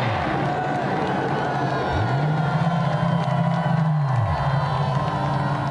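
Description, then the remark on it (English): A large crowd roars and cheers continuously, a loud dense wall of shouting and whooping that stays intense throughout, with a low rising-and-falling hum running beneath it. “The crowd are going mad.”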